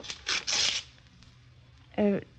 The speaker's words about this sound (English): Here's the key, and I'll write down the address so you'll be sure to find the house again. Now, let's see. Oh, here's a piece of paper.